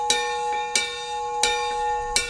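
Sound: bell ringing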